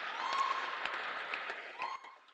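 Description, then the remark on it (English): A crowd claps together in a steady burst of dense, overlapping applause that holds level and then thins out toward the end, with no voices on top. “Are you sure? Is that the way you clap?”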